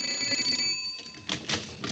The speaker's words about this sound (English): We've only rung a little over 200 doorbells. Let's try this house. I got a feeling that somebody here has heard of me. Go ahead.